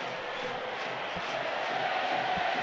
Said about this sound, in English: And, well, the crowd really bouncing now. You can hear the Leeds fans at the one end, the Wigan fans at the other.